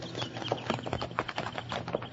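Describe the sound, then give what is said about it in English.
Horse hooves clop in a quick, steady rhythm, the sharp knocks repeating closely over a continuous background, fairly loud with no voices. “Then, just in time, Bill spotted the bandits' horses.”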